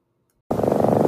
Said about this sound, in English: There's a sound a cat makes when she's really happy and healthy.